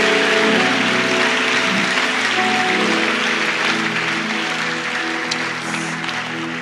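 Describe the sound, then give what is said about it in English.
An audience applauds steadily for the Lord Jesus, a dense, loud wash of clapping that holds for several seconds, with a sustained musical chord humming underneath and no one speaking. “Yes, let's clap for our Lord Jesus.”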